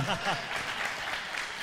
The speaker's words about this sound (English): Yeah, I was waiting for the applause.